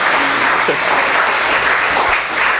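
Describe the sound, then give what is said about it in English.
A crowd at a Sunday church service claps for an interviewee, a dense wash of many hands with no pauses, loud and sustained across the whole stretch with no voices rising above it. “Let's give a round of applause for our interviewee.”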